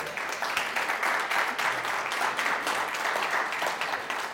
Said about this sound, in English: But happy Mother's Day to just all women. And men, can we just give a hand clap to all the women in the room right now?